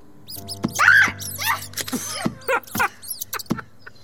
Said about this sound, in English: We heard a scream? Mice in a doll. That all?